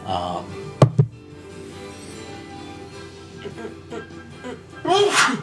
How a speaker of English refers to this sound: Really had to fucking sneeze.